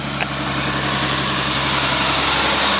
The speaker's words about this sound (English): Here comes the oil truck again. There we go. Another happy delivery.